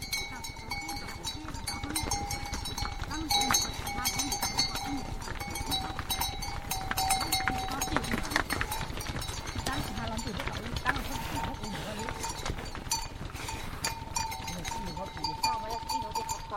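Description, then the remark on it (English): A herd of buffalo wearing bells is herded past in the hills outside of Sa Pa, with continuous overlapping clanking of bells and shuffling hooves, loud and steady throughout, while voices call out now and then. “Bell-wearing buffalo are herded past in the hills outside of Sa Pa.”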